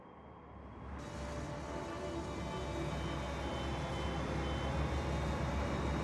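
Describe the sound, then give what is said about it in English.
Busy shipyard ambience: a dense, steady industrial roar with heavy vehicle rumble and a faint reversing truck beep buried in the noise, growing fuller after the first second, with no voices. “Okay, so what are we doing out here in the shipyard? Are we just looking at boats?”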